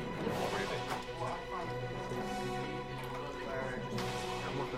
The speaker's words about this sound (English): As this is happening, you can hear the sound of footsteps, like, exploding at you. Something's being hit, like a bell is being hit. It's not very loud, but it's loud enough to, like, rouse the ogre and the orc, like, in that room.